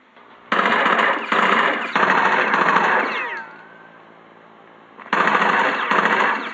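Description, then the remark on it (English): Loud, sustained bursts of rapid automatic machine gun fire from a war-based video game on Microsoft's Xbox 360, with a lull around the middle where a descending whine trails off, before another heavy burst kicks in near the end. “Those are the sounds of Rainbow Six Vegas, a war-based video game for Microsoft's Xbox 360.”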